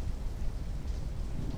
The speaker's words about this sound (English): It enveloped me completely. The wind, the rain, the crackling in the air. It was a freezing chaos whipping at my nightgown, plastering my hair to my neck.